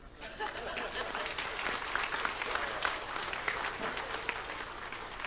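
An audience claps steadily for several seconds, a dense wash of many overlapping hand claps at a fairly even, moderate loudness with no voices standing out.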